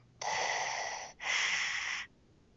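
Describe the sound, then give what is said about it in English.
A person imitates a mechanical, masked heavy breath: one long rasping inhale followed by one long exhale, loud, with no talking. “No, the breathing was good.”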